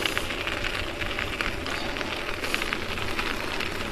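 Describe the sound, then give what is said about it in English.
Steady, dense hiss of heavy rain pouring down on a cold morning at 39 degrees, a continuous crackling wash of droplets with no pauses and no voices. “But yeah, it's raining hard this morning.”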